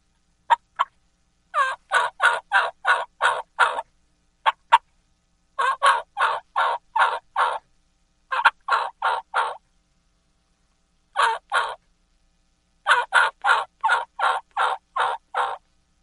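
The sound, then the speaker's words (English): Series of raspy young male turkey (jake) yelps made on a hand call, delivered in quick rhythmic bursts of four to eight notes with short pauses between, loud with no talking. “And just a little deeper whistle, a little deeper yelp, and boom, you have the Jake Kiki and Jake Yelp.”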